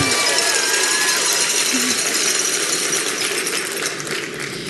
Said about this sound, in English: So those are cowbells. They're small. They're little cowbells.